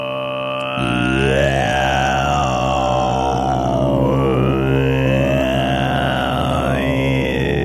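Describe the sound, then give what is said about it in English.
A voice throat-sings a low, buzzing drone in imitation of a didgeridoo, holding it steadily for about seven seconds while whistling overtones glide up and down above it. “That's what I've been working on is my throat singing.”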